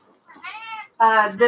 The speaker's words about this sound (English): This podcast was brought to you by Loud Cat, the loudest cat in the world.